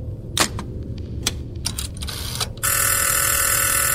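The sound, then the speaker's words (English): A few sharp mechanical clicks and taps, then a loud, steady telephone ring starts and continues unbroken to the end, bright and buzzing with many high overtones. “The phone begins to ring on your end, and the figure begins to move towards the phone, and doesn't really reach to answer it, but more like...”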